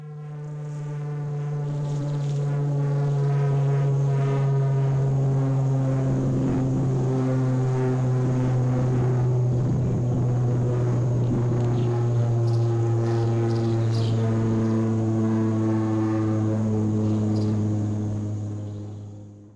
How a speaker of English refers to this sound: I want to play, you know, maybe 10 seconds or so of what this aircraft sounds like. This is not your car about to explode, by the way.